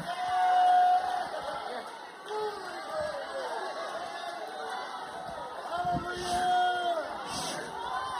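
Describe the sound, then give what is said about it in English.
A church audience shouts and cheers together in a dense, continuous roar of many voices, with a few sustained high whoops rising above the crowd at moments, fairly loud throughout. “I'm preaching good enough for some more shouting than that.”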